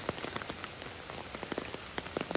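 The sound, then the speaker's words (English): Steady rain patters onto a hard surface, with dense irregular drops and occasional louder splats standing out. No voices, just the continuous wet crackle of falling water. “For me, today, that means walking in the rain.”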